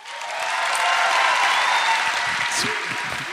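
A crowd breaks into steady, full applause that swells quickly and holds for a few seconds, with a couple of high whoops cutting through the clapping near the end.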